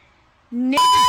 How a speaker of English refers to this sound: Okay, it's like they didn't mute her voice. They just beeped over the N-word. So, like, you still hear her say it. And then they put this obnoxious beep over it. Makes no sense.